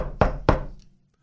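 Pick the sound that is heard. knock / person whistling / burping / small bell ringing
knock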